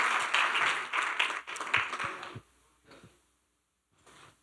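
A church audience applauds to the glory of God in a dense, steady burst of many hands clapping for about two seconds, then it quickly thins out to a few scattered, fainter claps before fading away.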